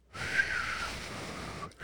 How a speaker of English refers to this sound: Can you whistle like that?